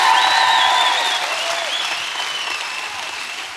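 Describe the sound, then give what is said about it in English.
Sustained applause from a sizable crowd at Evangel welcoming a guest, dense clapping with a few whistles riding on top, loud at first and easing slightly as it continues. “So one more time, will you just welcome him to Evangel?”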